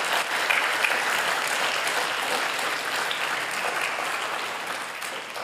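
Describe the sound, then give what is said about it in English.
A crowd applauds the Lord steadily, a dense wash of clapping that holds a fairly even loudness for several seconds before easing slightly at the end. “And so let's give the Lord a round of applause of what he does and how good he is.”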